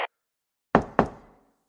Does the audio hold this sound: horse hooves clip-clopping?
no